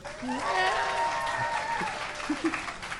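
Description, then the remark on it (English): A crowd applauds steadily for a few seconds to vote for a story prompt, a jewel-encrusted cat skull as the precious object; a dense wash of clapping with a few whoops and cheering voices mixed in, fairly loud throughout before easing slightly toward the end. “I'm going to read out a series of possible prompts, and by audience applause, we'll see which one we add to our story.”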